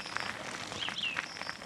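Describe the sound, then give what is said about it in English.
A few thin, high bird chirps rise and fall midway through, set against a steady hiss of woodland ambience on a path bathed in green, dappled sunlight, with soft rustling underneath. “Being assaulted by birdsong.”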